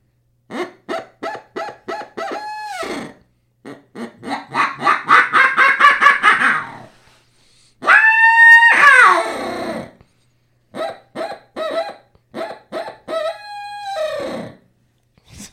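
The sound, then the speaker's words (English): A homemade reed game call made from 1-inch rubber hose, with a hand-trimmed reed and a tape-wrapped insert, is blown in quick honking notes and a fast pulsing run, then a long raspy growl, followed by more short, clipped calls. Fairly loud, with no talking. “That growl you do is pretty spectacular.”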